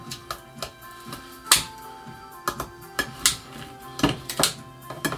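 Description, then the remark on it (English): A manual can opener works at a can of pizza sauce: irregular sharp metallic clicks and ratcheting snaps, some with a faint ringing tone, coming in uneven bursts with no talking. “Gotta open it up. Get my can opener.”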